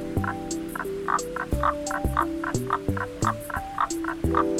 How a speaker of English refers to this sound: The Baw-Baw frog's call has been described as a harsh and rasping cruck, cruck, cruck.